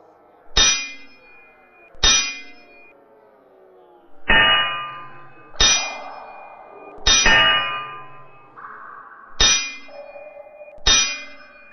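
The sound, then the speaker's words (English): Swords and clubs clash against shields in a series of about eight sharp, loud clangs, each leaving a brief ringing tail, spaced irregularly as two groups fight in underground corridors. No voices are heard. “The sound of sword and club smashing against shields rang out through the subterranean corridors as the two groups fought.”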